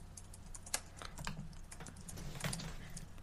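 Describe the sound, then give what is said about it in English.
Steady typing on a computer keyboard while typing out a lineup, a quick run of sharp, irregular key clicks over a low background hum, with one louder tap standing out early on. “Yeah, I'm typing it out so I don't miss anyone.”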